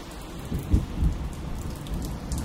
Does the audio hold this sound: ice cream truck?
no